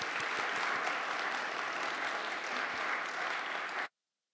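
An audience claps steadily, a dense wash of many hands at a fairly even level for nearly four seconds before cutting off abruptly into silence.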